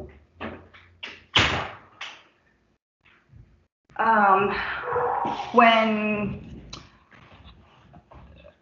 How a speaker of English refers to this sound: Sorry, let me just close my door here real quick.